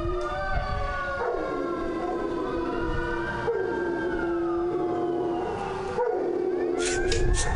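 A dog howls along with a wailing siren, long rising and falling tones overlapping continuously, fairly loud, with no talking.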